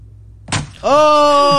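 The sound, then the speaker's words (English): A single heavy crash as a man drops about 6 feet from a high table and slams his arm down onto a microwave, denting it, followed right away by a loud, drawn-out pained cry that holds steady to the end. “He just slammed down with his arm on this microwave.”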